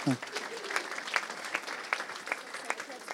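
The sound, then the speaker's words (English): A church audience applauds with steady, dense clapping at moderate volume, a few sharper claps standing out at regular intervals, with faint voices mixed in. “Let's give them a wee round of applause again, could we?”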